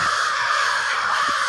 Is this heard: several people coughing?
no